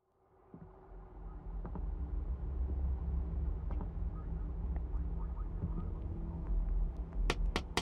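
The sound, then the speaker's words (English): A car engine idles with a steady, low rumbling drone and faint humming tones, swelling up from silence and holding even. A few sharp clicks and ticks break through near the end. “Kill the engine.”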